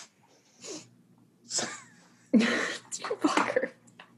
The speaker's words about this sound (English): No, I'm turning away because I'm sniffing, but I don't want to sniff into the microphone.